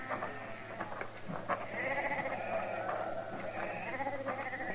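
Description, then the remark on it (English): A flock of sheep bleats continuously, many overlapping calls rising and falling, forming a dense, wavering chorus with no gaps and no talking. “He's your sheep?”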